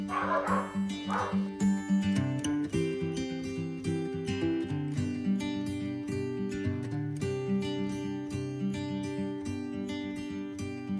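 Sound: dogs barking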